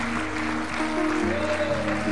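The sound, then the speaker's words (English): An audience claps its hands in thanksgiving and praise to the Lord, a steady dense wash of applause over sustained organ-like tones that shift pitch underneath. “Give the Lord a hand clap of thanksgiving and praise today.”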